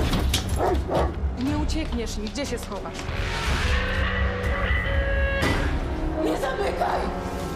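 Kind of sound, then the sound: animal, vicious dogs barking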